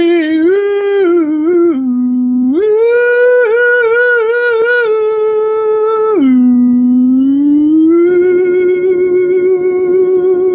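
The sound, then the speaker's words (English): Neighborhood dogs howl in long, continuous, wavering tones that rise and fall in pitch, loud for about ten seconds with no talking. “And as soon as the neighborhood dogs stop barking,”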